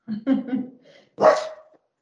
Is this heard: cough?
no